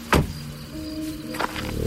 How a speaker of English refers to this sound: The door thunks shut with a satisfying sound big American cars made in the late 60s.